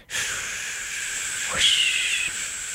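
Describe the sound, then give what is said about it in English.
A voice imitates the whoosh of wind past an electric car at highway speed: a steady, breathy hiss held for nearly three seconds, with a quick rising whistle midway that lingers as a thin high tone. “Without real or artificial piped-in sound, most electric cars are so quiet that about the only thing to hear at highway speed is the whoosh of wind and drone of tires against pavement.”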